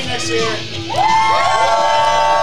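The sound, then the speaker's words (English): A crowd cheers and whoops for who wants to go to Maine during a quarters drinking-game competition, many voices rising together into a loud, sustained roar after a brief, quieter murmur at the start, with overlapping high-pitched shouts sweeping up and down. “That is a cheers for who wants to go to Maine.”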